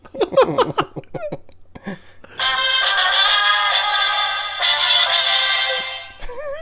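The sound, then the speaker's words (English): A party noisemaker sputters out a run of short squeaky toots, then blares one long, loud, buzzy honk that holds for several seconds before cutting off. “By the way, that won't be back next week, the noisemaker.”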